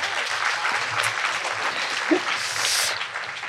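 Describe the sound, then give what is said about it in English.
A crowd applauds steadily for several seconds for essayist Ariel Levy as she is introduced, a dense, bright wash of many hands clapping at once, holding a fairly even loudness throughout with no one speaking over it. “So let's applaud Arielle.”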